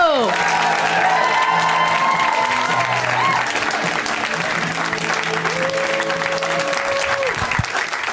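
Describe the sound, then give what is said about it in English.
At the show Put Your Hands Together, a crowd claps steadily and loudly for several seconds to welcome a first-time performer, a dense wash of applause with a few tonal sounds, like music or whistles, sliding through it. “We give them a huge, warm welcome, a big round of applause.”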